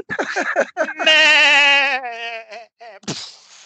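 A goat lets out a long, loud, wavering bleat, preceded by a few short choppy calls and followed by another brief bleat, all clear with no voices.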